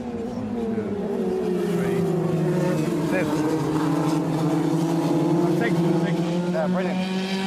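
Steady roar of racing car engines during an F2000 championship race, a sustained harmonic drone with slowly shifting pitch as the cars circle the track, continuous and fairly loud throughout, with no clear speech.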